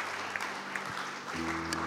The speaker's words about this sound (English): Come on, let's give those people and our God a round of applause this morning.